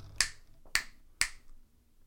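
Three sharp hand claps in quick, evenly spaced succession, close and crisp, with quiet in between and no talking.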